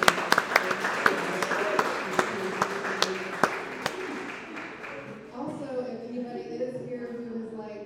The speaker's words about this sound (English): So give just a warm round of applause for them.